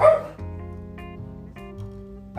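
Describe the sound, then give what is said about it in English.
A dog named Dexter barks several times in quick succession, the barks sharp and somewhat whiny, with brief pauses between them and no one talking. “Of course, Dexter is barking.”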